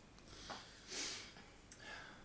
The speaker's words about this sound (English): Is that all I get? Yeah. A sniff. Yeah. Got a cold this week. No, just disdain towards you.